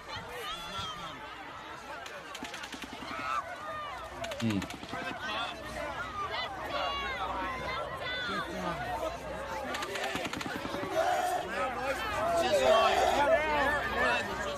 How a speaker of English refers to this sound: You could clearly hear the sound of the fully automatic weapon in the background. I mean, he definitely had some sort of machine gun. Anything that that fires fully automatically like that is considered a machine gun.